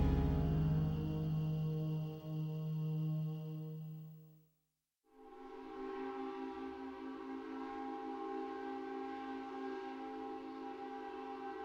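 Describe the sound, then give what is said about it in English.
A boat train bound for Southampton blows its whistle loud and long. The whistle cuts off for a brief moment, then sounds again in a sustained, steady blast over a low rumble of the moving train. No one speaks. “Put the finishing touches on the Devil's Garden, dress fast, get out of the house before 6:30, take the boat train to Southampton, and board the ship for America.”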